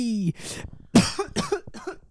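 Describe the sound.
A person's attempted voiced 'burr' sound gives way to a string of about four harsh coughs in quick succession, each a loud, raspy burst.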